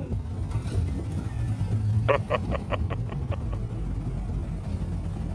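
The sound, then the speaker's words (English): A muscle car engine on Treasure Island rumbles low and steady, with a quick run of about eight sharp, evenly spaced pops or ticks in the middle. No one speaks. “You know those cars? They just seem so non-polluting.”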